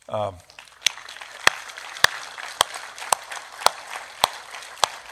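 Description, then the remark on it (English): A church audience applauds the adult volunteers who worked during the week's Vacation Bible School, a steady, dense wash of clapping, with one pair of hands landing sharp, evenly spaced claps above the crowd. A voice briefly sounds at the very start. “And we know that you did not do what you did this week for this applause.”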